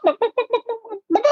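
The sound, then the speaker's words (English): A person imitates a hen's egg-laying call: six quick, evenly spaced clucks fading slightly, then a louder rising squawk at the end, voiced clearly with no other sounds. “So when they lay an egg, it's usually.”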